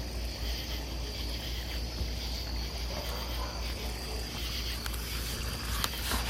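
Outdoors on a starry night, gentle water laps in a steady, continuous wash with a low rumble underneath, while crickets chirp constantly in a thin high drone. No voices are heard.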